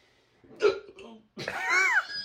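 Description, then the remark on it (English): A sharp hiccup jolts out, followed a moment later by a longer voiced vocal sound with a rising and falling pitch. “Because I have hiccups.”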